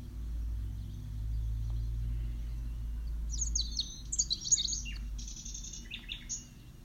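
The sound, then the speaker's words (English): Bright bird chirps and trills flit in after a few seconds in springtime, layered over a steady low outdoor rumble. The calls come in quick, irregular bursts. “It's springtime. Birds are chirping.”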